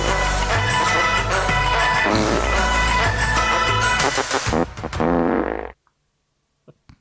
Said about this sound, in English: Well, I thought there was a little one on the end there. Maybe I don't know. He might have added more farts.